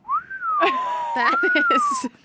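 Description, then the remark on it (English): A single long, slow whistle, a mournful, gently wavering tone that dips and rises again, held for about two seconds while someone talks over it. “Like long, like that. Yeah, like a dirgeful whistle”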